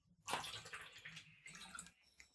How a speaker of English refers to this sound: So let me drink some water before I carry on.